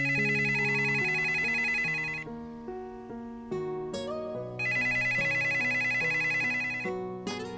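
A telephone ringtone plays a bright, synthesized melody, repeating its short tinkling phrase about three times. It sounds loud, with no voices over it.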